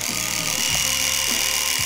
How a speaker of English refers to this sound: I'm going to spare you the gory details, but I have personally injured myself when trying to clear up the roughage down there with an electric razor. Took the Lawnmower 4.0 to it.